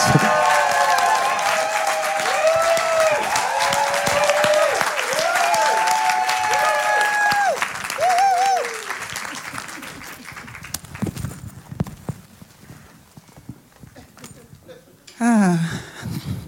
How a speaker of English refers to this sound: can we just give a great big round of applause and honouring